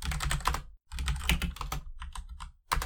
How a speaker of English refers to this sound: Why don't you use your clacky keyboard?